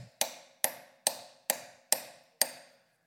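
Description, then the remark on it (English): A hammer drives a nail into wood with six sharp, evenly spaced blows, each ringing briefly before the next. The strikes are fairly loud, with no talking. “Bigger hammer. Anybody got a bigger hammer out in the garage or in your car?”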